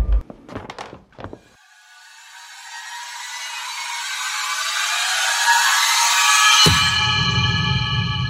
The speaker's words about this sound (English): Nadia turns Stella's light down a little and pulls the bedroom door shut behind her as she leaves the room.